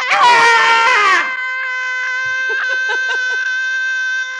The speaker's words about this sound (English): Oh, I think we should all take a moment and scream. I think so. You ready? Yeah. One, two, three.